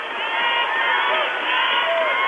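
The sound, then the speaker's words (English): A loud, largely pro-Acadia basketball crowd at a game between Acadia and UBC roars and jeers at a referee's call in a sustained, dense wash of voices, with a few higher shouts and whistles rising above the steady din. “Sounds like a pro-Acadia crowd around here.”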